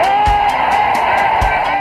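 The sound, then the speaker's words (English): A baseball stadium crowd rises to its feet cheering a catch on a long drive to center field, a loud, sustained roar with brief bursts of clapping or shouts punctuating the steady wash of voices. “Just brought this crowd to its feet with a... a catch, which must have been an optical illusion to a lot of people.”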